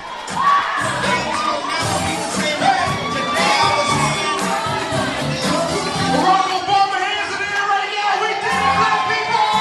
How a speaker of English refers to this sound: Barack Obama had reached the threshold of 270 Electoral College votes and become the new President-elect of the United States of America. And at the House of Justice in Harlem, people were cheering into the night.